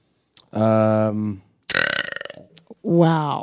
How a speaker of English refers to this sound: I mean, our moms were not afraid to... burp